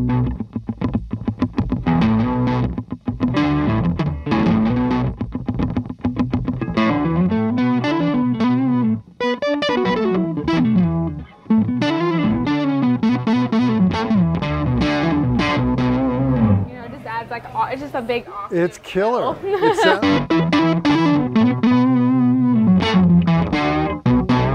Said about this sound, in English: But I don't really use those on that pedal. I use the octave on it. Okay. And I usually pair it with either the overdrive or the distortion pedal that I have. Yeah. So it's like a.